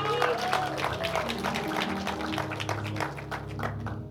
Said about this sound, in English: Clap if you want to clap.